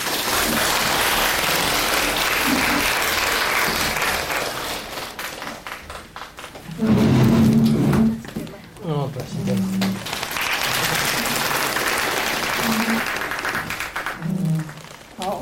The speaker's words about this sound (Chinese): 我们呢这个热烈的掌声呢，再次呢表示感谢。